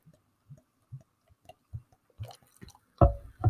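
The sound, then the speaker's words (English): Potosi beer glugs out of a bottle into a cup, starting as soft, evenly spaced gurgles that quicken and end in a louder, splashy rush, with no voices. “And then I'll just pour the Potosi.”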